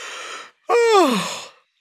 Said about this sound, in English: Ooh, how about if you see someone else yawn? Does that make you yawn? Just the word yawn can make me yawn sometimes.